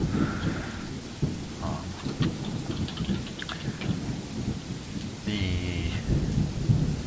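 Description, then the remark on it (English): Steady rain pours down outside while low thunder rumbles continuously underneath, a dense, enveloping storm slowly dissipating, with no voices and no clear sharp cracks. “The storm outside seems to slowly be dissipating.”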